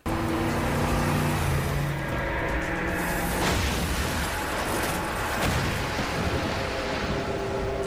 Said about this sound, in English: The car goes straight into the pier, or off the pier. It's upside down